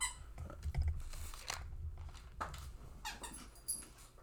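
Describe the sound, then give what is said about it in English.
A dog chews on a squeaky toy, producing several short, high squeaks at irregular moments amid soft gnawing and crunching sounds, at moderate volume with no talking. “She just stole the toy away from this poor dog.”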